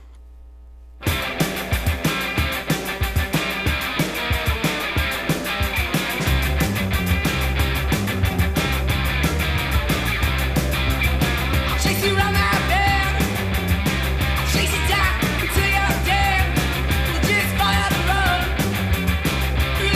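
After a second of quiet, a loud, dense rock song kicks in, driven by a heavy, repeating guitar riff over pounding bass and drums that stays at full volume throughout.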